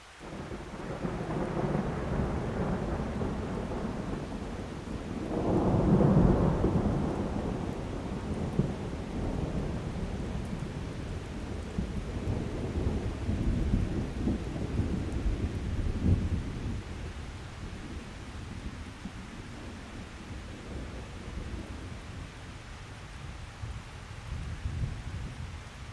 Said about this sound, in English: It's a warm day. We can just relax here, letting ourselves feel the rain as it lands. Let it feel it land on your head, your face.